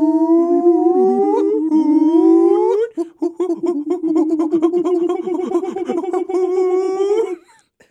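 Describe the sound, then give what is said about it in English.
A person imitates howler monkey calls, starting with a long, loud, rising howl, then breaking into a run of rapid, choppy, pulsing hoots that continue for several seconds. “Now enjoy the next 20 minutes of howler monkey noises. Done not very well.”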